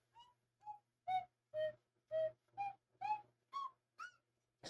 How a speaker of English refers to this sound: Works pretty good. Yeah. But yeah. Not for what I want. I want to be able to play real, you know, songs. Real slide whistle shit.